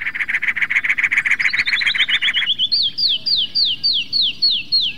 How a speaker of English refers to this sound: through the dense cactus, while the clear tones of the canyon wren echo off the hard stone, carrying a long distance. With cactus and canyon wrens, there's a clear sense of how the different habitats, cactus and stone, live in their songs.